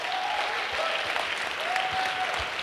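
An audience applauds steadily, a dense wash of many hands clapping at once, sustained and fairly loud throughout with a faint tonal whistle or feedback tone drifting in the background; a round of applause for a leader at a Faith Community panel conversation.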